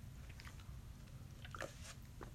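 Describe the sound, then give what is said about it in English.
Someone quietly sips a drink, with a few brief wet mouth and swallowing sounds over a steady low hum and no talking. “Pardon me, I just had a little sip of a little drink just now.”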